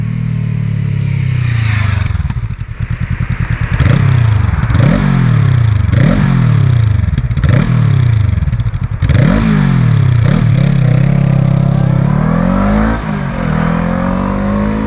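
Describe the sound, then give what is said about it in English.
A Honda CL500 motorcycle engine revs up and shifts through gears repeatedly, rising and dropping in pitch as it rides through town traffic, loud with steady road and wind noise underneath. “So what I'm going to do now is I'm going to take you to a bit of town riding and going through traffic and let you know what that's like.”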